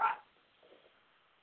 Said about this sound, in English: The dog's coming in loud and clear.